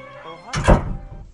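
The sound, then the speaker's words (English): A door shuts with a single solid thunk, moderately loud, briefly preceded by faint tonal murmuring that fades as the impact lands. “Oh, shut the door.”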